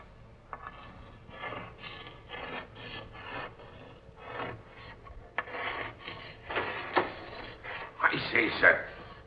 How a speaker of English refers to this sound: What be you doing sitting there writing on the captain's slate? Oh, ignoring me, eh? Now look here, you. This is Captain Strong's own cabin, and no one's got any business of sitting here writing.